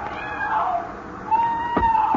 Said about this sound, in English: Then you hear it. The cry of a woman out in the surf.